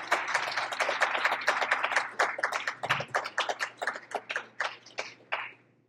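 An audience applauds with dense, overlapping claps that gradually thin into scattered individual claps before trailing off. No one speaks.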